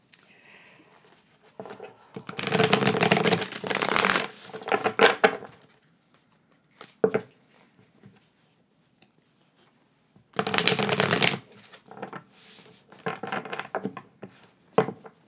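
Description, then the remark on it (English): Two bursts of cards being shuffled, a long riffling rush around two to five seconds and another near eleven seconds, with softer taps and flicks of cards between them, fairly loud. “My deck's smaller, so Jen takes her a while to shuffle them.”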